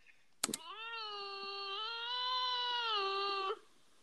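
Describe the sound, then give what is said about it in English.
A fox lets out one long, steady, nasal wail lasting about three seconds, heard after a couple of quick clicks, with no talking. “No, it's a fox.”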